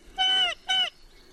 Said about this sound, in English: And importantly, these calls were an answer to taped recorded calls of North Island kōkako. You get this call when you've got the bird in the hand and you're swinging it upside down. It's a degree more, I think, than the last in terms of alarm.